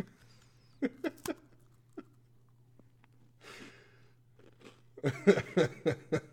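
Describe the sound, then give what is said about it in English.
Crisp crunching as a woman bites into a super thin Chips Ahoy cookie with a gummy filling: a few sharp snaps early on, a pause, then a quick rhythmic run of chewing crunches near the end, over a low steady hum. “She's biting, she's chewing, she's savoring.”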